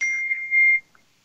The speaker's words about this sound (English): Do you have your dinger on your phone